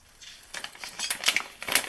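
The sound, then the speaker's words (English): A rapid patter of whole almonds clattering as they are poured into a container, fairly crisp, growing busier and louder toward the end, with no talking. “So I'm just going to pour... Now these are whole almonds though.”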